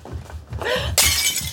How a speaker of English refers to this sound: has a depression glass candy dish that gets broken in the fight